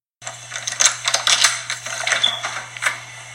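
A door opening with a clattering run of metallic clicks and rattles from the latch, bright and fairly loud, over a steady low hum. No one speaks.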